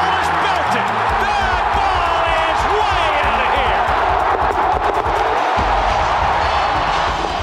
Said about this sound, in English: Listen to this crowd. In your life have you seen anything like that?